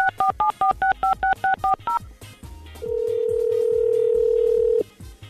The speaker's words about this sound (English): All right, so stay by your phones. It's time to make a call. Let's do it.